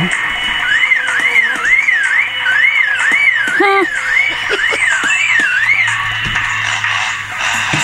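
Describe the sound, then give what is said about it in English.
A lyrebird imitates a car alarm, a rapid rising-and-falling electronic whoop repeated steadily for several seconds, loud against a busy background of other bird calls and rustling. “A car alarm. That's a car alarm.”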